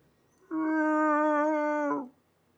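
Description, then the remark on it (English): A person vocally imitates a rhino call: one long, steady, mid-pitched groan lasting about a second and a half, dropping slightly in pitch as it ends, with no other talk. “What's a rhino sound like? I imagine something like this.”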